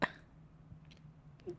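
A single short, sharp cough bursts out at the start, followed by a quiet stretch with only faint low hum and a soft click or two.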